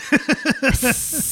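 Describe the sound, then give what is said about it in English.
A short run of descending, voice-like chirps gives way to a steady, breathy hiss that holds for the last half second, fairly loud and without any speech. “I can hear goths hissing at me.”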